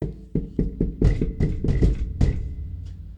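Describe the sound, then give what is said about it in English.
A quick run of sharp knocks becomes heavier, irregular banging on a door, while a thin, steady electronic doorbell ring holds underneath for about a second before fading out. “Banging and ringing the doorbell.”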